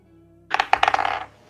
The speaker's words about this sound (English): Okay. Authentic dice sound. The disadvantage rolls are really getting me. Okay, no, that was only a 9. unfortunately not this time.